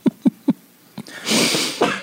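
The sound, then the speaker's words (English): Three quick, sharp breathy catches, then a pause and one more, before a loud, hissing, broad burst of air that trails off: a sneeze, with no talking. “Bless you.”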